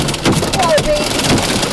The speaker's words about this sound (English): I've got some audio here of the last time I drove into a hailstorm